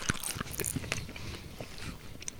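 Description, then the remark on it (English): Crisp crunching of a corn snack being chewed, with repeated sharp bites and brittle crackles in an irregular rhythm, no talking. “It's like chewing popcorn.”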